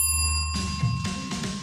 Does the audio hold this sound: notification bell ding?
yes